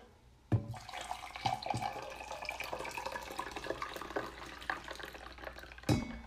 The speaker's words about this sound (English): Oh, wait, it's 6:30 p.m., so obviously we have a fresh pot of coffee brewed. So let me pour myself a cup.